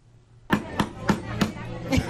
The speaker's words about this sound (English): Hammering her crab. She's got a hammer, like the judge.